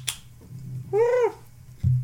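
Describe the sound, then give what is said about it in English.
A single drawn-out cat meow, rising and falling in pitch for about a third of a second, sounds fairly loud over a low steady background hum. “Yeah, making tons of noise, bud.”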